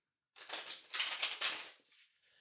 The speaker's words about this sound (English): So just take a moment. Connect to the cards by listening into the sound of them being shuffled.